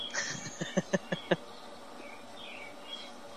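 A quick series of about five sharp cricket chirps rises in loudness, with a thin high whistle at the start and faint bird twittering in the background afterward.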